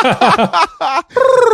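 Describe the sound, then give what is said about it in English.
Birds call loudly: a quick run of sharp, chirping bursts, a short pause, then a buzzy, rapidly pulsing trill. No one talks over them. “Even though I have great rhythm, the birds in the background say otherwise.”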